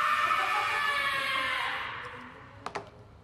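A person lets out one long, shrill, sustained scream that holds steady for about two seconds and then fades away, followed by a couple of brief sharp clicks.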